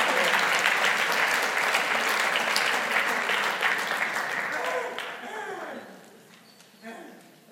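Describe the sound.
A room full of people applauds loudly and steadily for several seconds, the clapping thinning out and fading toward the end as voices begin to emerge.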